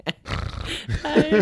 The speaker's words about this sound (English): apologies if you hear my dog snoring in the back